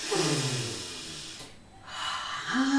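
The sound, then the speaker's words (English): A person imitates a big sniff: two long, breathy inhales split by a short pause, each carrying a faint voiced whine. “Mother bear sat up and gave a big sniff.”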